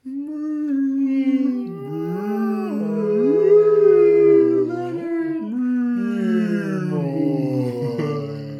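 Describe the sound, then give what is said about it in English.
Several voices imitate humpback whale song together, holding long wavering moans that slide up and down in pitch, overlapping loudly and continuously for several seconds. “let's sing songs for Leonard Nimoy in the style of Star Trek IV. of the humpback whale”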